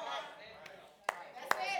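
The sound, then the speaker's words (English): A speaker claps for himself: two sharp hand claps, about half a second apart, ring out over a steady murmur of voices and background sound. “Let me clap for myself right there.”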